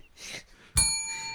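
A single bright bell strike rings out fairly loud, its metallic tone sustaining and slowly fading, preceded by a brief soft rustling whoosh.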